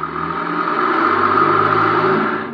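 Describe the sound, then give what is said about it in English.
A car engine hums steadily and fairly loud, a continuous whirring drone that swells slightly as the car drives out of an alley, with no voices over it. “Wait, there's a car coming out of the alley.”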